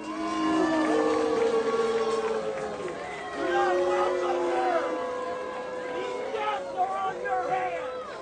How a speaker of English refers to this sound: those are clearly boos from that crowd as he walks to the podium. He's running for president, but this is the reaction he's getting from fellow Floridians.